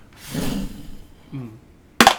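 Dice are dropped against the side of a bowl, rolling a 12, with a sudden bright, ringing clatter near the end, following a couple of brief low vocal murmurs.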